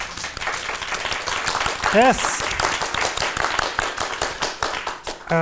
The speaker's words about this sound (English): Welcome. Applause, please.